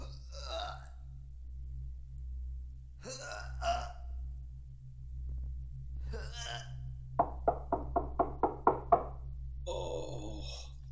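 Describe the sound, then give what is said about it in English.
A quick run of about eight loud, evenly spaced knocks on the heavy gate of Macbeth's castle, preceded by a few breathy, rustling bursts over a steady low hum. “Oh, here's a knocking indeed.”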